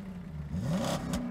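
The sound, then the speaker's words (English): A car engine revs up briefly, its pitch climbing quickly before dropping back to a steady rumble, moderately loud, with no voices present. “I haven't heard that sound since our car broke down last month.”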